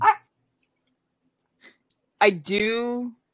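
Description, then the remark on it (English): A dog barks: one short bark, a quiet pause, then a sharp bark that stretches into a long, falling, whining yowl. No one talks. “No, it's not your fault that the dog's screaming at me.”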